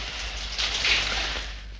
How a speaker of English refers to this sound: The cold needles of water stabbed life into me. Peeled off my clothes. Got to my feet. Stayed under the shower for at least 5 minutes.